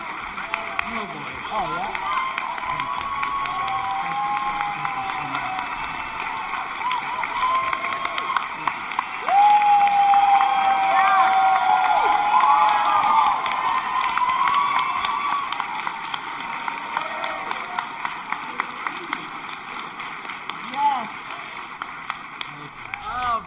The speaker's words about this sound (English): Let's give him the biggest round of applause. Thank you. Billy West, ladies and gentlemen, the man, the myth, the legend.